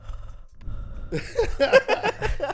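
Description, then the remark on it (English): A voice imitates the heavy, raspy Darth Vader-style breathing of a man holding the camera while shooting a long scene: a soft, low rasping breath, then louder throaty, groaning exhales in quick succession, with no actual words. “We're like, what the fuck is that breathing? Hey, but you know what? He shakes less, fool. But he's breathing hard. Sound like Darth Vader”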